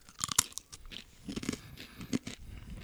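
Crisp crunching on a dried apple snack made only of apple, with no oil or added sugar, with several sharp bites early on followed by softer, irregular chewing. No one speaks.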